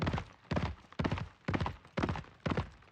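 Several horses' hooves thunder across the wooden planking of a bridge and out a gate in a steady, repeating rhythm, bursts of hoofbeats arriving about twice a second, fairly loud with no voices.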